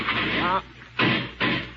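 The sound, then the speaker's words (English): A heavy metal control-cabin door slams shut with a loud, rattling clang that rings briefly, followed by two more short, booming metallic bangs in quick succession. “That makes enough noise for half a dozen metal doors.”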